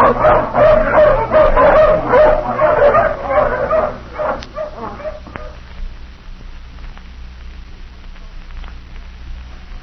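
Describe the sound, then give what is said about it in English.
A pack of hounds, just let off the leash, barks and yips excitedly, loud and overlapping for the first few seconds, then thins to scattered yelps that fade. “All right, let the hounds off the leash.”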